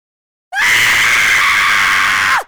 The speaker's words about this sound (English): lets out that scream, and everything around her just stops in time, except for her and Wabek.